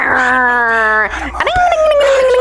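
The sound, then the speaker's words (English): A voice imitates a moped engine with a loud, buzzy, sustained drone that slides slowly downward, breaks off briefly, then returns as a second long whine sinking lower in pitch. “What are your favorite moped, moped sounds?”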